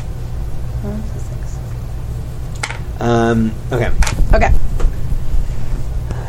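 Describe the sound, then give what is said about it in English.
A short clatter of casino dice tumbling as they are rolled, a quick burst of sharp clicks over a steady low rumble, with a brief voiced sound just before it. “It's the only thing with this the casino dice.”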